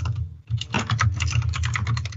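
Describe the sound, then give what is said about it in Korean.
Rapid, uneven clatter of computer keyboard typing, many keystrokes in quick succession with a brief pause near the start, fairly loud and steady over a low background hum. “이, 지금 키보드 치는 사람 누구야?”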